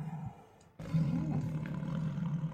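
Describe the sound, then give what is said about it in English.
A deep animal growl rumbles low and loud, breaking off briefly after a softer opening snarl, then resuming as one sustained, throaty roar to the end, with no voices. “All right, so there is a growling. A growling sound.”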